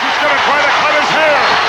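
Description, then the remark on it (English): A wrestling crowd roars loudly and steadily as Andre, in black tights, cuts Studd's hair: a dense wash of many shouting voices that holds throughout with a few dull thumps beneath it. “Listen to the crowd.”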